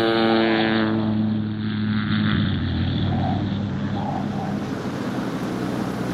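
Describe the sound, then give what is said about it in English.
A loud, steady propeller-plane engine roars as an airplane takes off and starts to lift off the ground, its droning hum and rumble filling the whole stretch with no talking. “That's it! We're starting to lift off the ground.”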